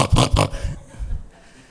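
A pig gives two loud, quick oinks, followed by a few softer, low grunting snorts that trail off, with no talking.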